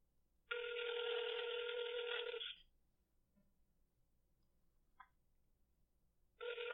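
An outgoing phone call's ringback tone while calling an expert: a steady electronic ring lasting about two seconds, a short pause with a brief blip, then the next ring starting, clear and alone with no talking.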